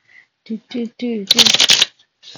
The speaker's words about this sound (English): So I'm shuffling my smaller deck.